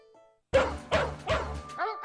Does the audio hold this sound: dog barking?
yes